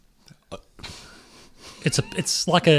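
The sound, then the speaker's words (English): A long, noisy exhale of heavy breathing by a quiz contestant during a baseball trivia question, soft, followed by short bursts of voices talking. “he's breathing heavy because he sees a sense as an opportunity here to take the match away from”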